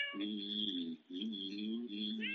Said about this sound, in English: Any cat will tell you the word for great taste is meow, as in Meow Mix cat food.